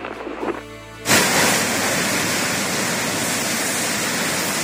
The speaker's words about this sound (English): Wind so strong in Englewood, Florida, almost sounds like a freight train.